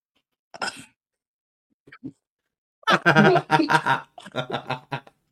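A close, loud fit of coughing: one sharp cough, a brief pause and a faint catch of breath, then a rapid cluster of harsh, hacking coughs with no talking.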